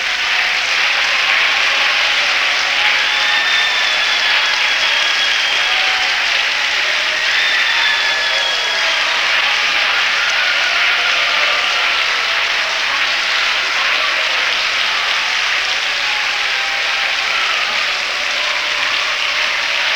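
An audience claps their hands at the preacher's call, a steady, dense wash of applause that holds at an even, fairly loud level throughout, with a few faint tonal voices or shouts rising briefly above it.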